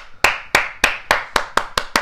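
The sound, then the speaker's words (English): A slow clap by a single pair of hands: eight sharp, bright claps that start spaced out and gradually quicken. No voices. “Because this is your round of applause. It's the slow clap.”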